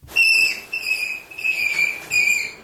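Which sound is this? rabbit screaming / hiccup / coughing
rabbit screaming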